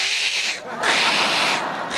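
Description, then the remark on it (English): A voice imitates a panicked cat on an airplane as it takes off and the cabin decompresses, letting out harsh, strained yowling bursts: two long, loud screeches with a brief break between, raspy. “And sure enough, the plane takes off, the cabin decompresses, that poor cat starts freaking out.”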